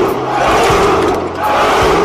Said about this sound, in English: All right, three cheers